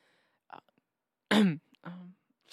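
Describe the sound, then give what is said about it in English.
A loud throat clearing bursts out midway from a person with the sniffles, surrounded by a few shorter, quieter throat noises and sniffs, with brief silences between them and no speech. “excuse me, sorry. Got the sniffles going.”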